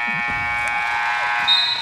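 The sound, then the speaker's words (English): A loud, continuous electronic buzzer drones steadily without a break, its harsh tone sharpening slightly near the end, with faint voices murmuring underneath. “Does the buzzer seem loud here? Yeah, it is a loud buzzer.”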